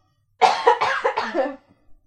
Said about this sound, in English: Went around the store to cough.